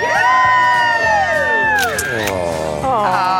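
A large outdoor crowd at the Today Show cheers loudly and continuously on a fall morning, with high-pitched whoops and shouts rising and falling across the mix for a few seconds.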